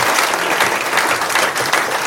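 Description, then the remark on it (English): A crowd claps steadily and loudly for two legends at an event put on by London Pride and Guinness, a dense wash of many hands applauding without pause for the full two seconds, with no voices rising above it. “So just a round of applause, please, for the two legends.”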